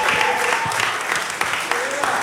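Steady audience applause, a dense wash of many hands clapping at once with sharper individual claps popping out, sustained at an even loudness for a couple of seconds.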